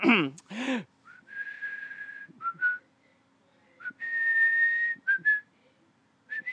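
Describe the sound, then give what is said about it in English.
Someone whistles a short tune, with sustained clear notes broken by brief pauses and a few quick rising slides, preceded by a brief burst of voice at the start. “How's my whistling? Your whistling's amazing.”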